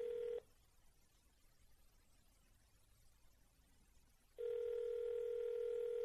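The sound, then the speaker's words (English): A steady, buzzing telephone tone of an outgoing call placed from a blocked number cuts off after a brief moment, leaving about four seconds of near silence, then sounds again, loud and clear, with no voices. “Maybe we'll find out when she doesn't answer and we get her voicemail.”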